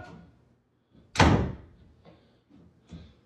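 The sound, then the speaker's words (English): A door is pulled open with a faint rattle, then slammed shut with a single loud bang, followed by a couple of softer knocks as it settles. “They slammed the door, and then they opened it and slammed it.”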